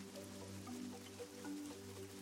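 A steady wash of heavy rain falls continuously at night, a soft hiss with scattered drops, fairly quiet and even throughout, with a low constant hum underneath.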